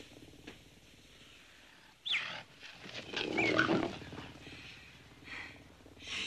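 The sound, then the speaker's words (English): Madge's mountain lion rolls around in a bed, growling playfully in low, rumbling bursts that swell and fade over several seconds, with a sharper snarl near the start and no one talking. “When he kicks open the door, he finds Madge's mountain lion rolling around in the bed, and growling playfully.”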